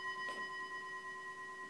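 A single soft chime of a monk's meditation timer bell, set to ring about every 15 minutes as a reminder to pause, rings out, its steady pure tones holding and slowly fading across the whole moment with no talking.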